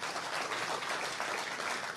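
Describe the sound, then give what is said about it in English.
An audience at Jennings High claps steadily before a chaplain is introduced. The clapping is a dense, even wash of many hands that holds its level from start to finish with no break. “I know you are going to clap.”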